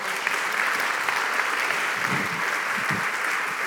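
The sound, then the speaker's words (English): Steady applause from a large church audience at Renovation Church welcoming Pastor Timothy back, a dense continuous patter of many hands clapping at once at an even, fairly loud level with no talking over it. “Renovation Church, can you please give Pastor Timothy a round of applause as he comes back?”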